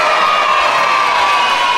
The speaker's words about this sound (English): Yeah, I mean, yeah, I'm just going to give them a round of applause.